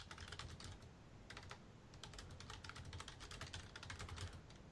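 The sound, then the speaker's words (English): Rapid, irregular clicking of keys on a computer keyboard as someone types a chat message, steady for several seconds, with brief pauses between bursts of typing and no voices. “I'm typing you in chat.”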